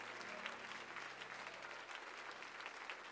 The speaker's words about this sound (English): Oh, somebody clap their hands unto the Lord one more time.